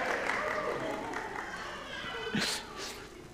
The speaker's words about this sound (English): There's the three kings. Give them a round of applause for those that can see them.